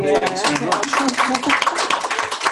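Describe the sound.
An audience breaks into steady applause for the speaker at the end of a talk, a dense crackle of many hands clapping that carries through the whole stretch, with a voice talking underneath it.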